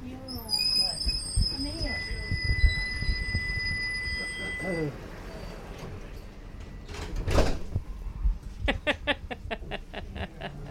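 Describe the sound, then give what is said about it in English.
Inside a moving modern tram, a steady rumble runs under high electric whines and tones, a sliding door hisses and thuds shut, then a rapid series of beeps sounds. People talk. “It's a good tram, isn't it?”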